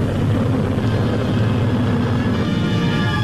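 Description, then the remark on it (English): A steady, heavy drone of the propeller engines of a bomber with a propeller out, limping home, loud, with a deep rumbling low end and continuous mechanical roar throughout, no voices present. “Propeller out, a bomber limps home.”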